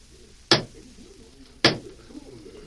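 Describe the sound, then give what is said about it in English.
Two sharp, loud clock ticks about a second apart in a courtroom during a trial, each a crisp woody click standing alone over a faint, quiet background. “Then as the clock ticked away what seemed a lifetime to the crowd, which tensely awaited the outcome, the trial came to an end.”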